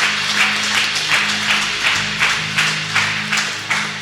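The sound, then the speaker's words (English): An audience gives a hand clap in praise of God, a dense wash of hand claps with a loose rhythmic pulse, loud and steady, over a low sustained hum of instruments beneath. “Give him a hand clap.”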